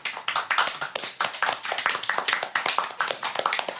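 A crowd applauds steadily, many hands clapping in a dense, continuous patter at fairly close range, with no voices standing out.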